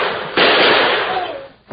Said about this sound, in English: Jumping snake, you shot the lawman.